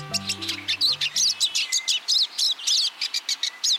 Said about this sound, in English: Hear that? It's the chatter of hungry pine siskins at a thistle feeder.